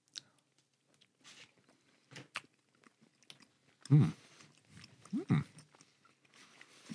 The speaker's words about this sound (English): Yeah, back away from the mic. I'm chewing so close to the mic.